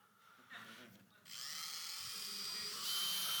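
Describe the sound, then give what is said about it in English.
A high-pitched backup dentist's drill starts up at about one second and whirs steadily, rising in pitch as it is put on high speed near the end, with faint talking underneath. “So if you turned up to the dentist and he said to you, the drill's broken down today. There's something wrong with it, but I've got a backup.”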